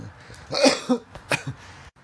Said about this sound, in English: I had to cough there. It was amazing. Perfect timing. Oh, I gotta let it out.